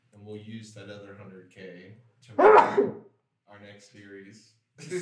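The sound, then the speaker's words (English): A single loud sneeze bursts out in the middle of a man's speech, sharp and brief, with talking resuming right after. “Bless you.”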